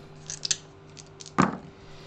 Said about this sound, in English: This roll is with 4 dice. Oh, 4 dice. 2. This one is with 4 dice. 1. Four dice.